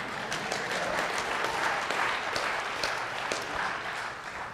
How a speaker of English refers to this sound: Okay, are we live back here? That one person wanted to clap for that answer. Go ahead, give it to me. Come on.